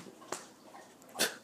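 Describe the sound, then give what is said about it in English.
A dog named Nola sniffing: two short, breathy snorts of air, the second a bit louder and longer, separated by a quiet pause with faint background hiss and no talking. “Who are you sniffing at?”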